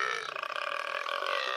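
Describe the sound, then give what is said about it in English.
A single long, loud burp, performed by a voice and rumbling steadily for over a second, with nothing else around it. “Burped the bogs.”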